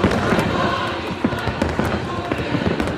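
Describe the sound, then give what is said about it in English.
A fireworks finale in full swing over the Washington Monument in Washington, D.C., spelling out Trump 2020: dense, rapid-fire bursts and sharp cracks layered over a constant roaring rumble, loud and continuous throughout, with faint crowd noise mixed underneath. “And then for the grand finale, Ivanka Trump and President Donald Trump spoke from the White House lawn, and there was a huge finale of fireworks spelling out Trump 2020 over the Washington Monument.”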